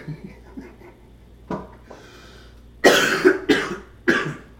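A harsh coughing fit: a faint clearing sound, then three loud, rough coughs in quick succession near the end, each a burst of raspy noise with no talking.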